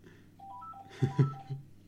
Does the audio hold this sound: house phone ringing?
yes